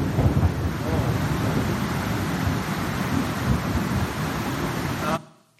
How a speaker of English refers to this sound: You had to hear the thunder.